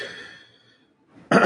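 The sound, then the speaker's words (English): A fading, throaty tail of a cough gives way to a short quiet gap, then a sudden loud, harsh cough bursts out at the end. “It's a good thing these are on separate tracks now, because I can just cut out the coughing.”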